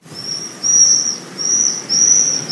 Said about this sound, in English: I think I've heard a swift scream all of once so far this year